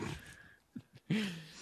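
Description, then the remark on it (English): A female dog named Allie vocalizes: a low grumble, a couple of short grunting sounds, then a longer, louder whining growl at the end. “She's back. She heard you talking shit.”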